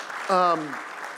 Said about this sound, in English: Can I have our class of 2021 come up here and join me in front? Yeah, you can clap while they're coming up. You'll have plenty of opportunities to clap.